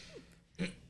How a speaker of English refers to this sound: That's crazy. Aliens be burping. Are you sure they're burps and not farts?